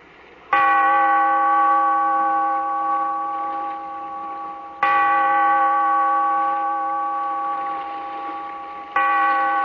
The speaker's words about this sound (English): In this cave by the restless sea, we are met to call from out of the past stories, strange and weird. Bellkeeper, toll the bell, so that all may know we are gathered again in the Weird Circle.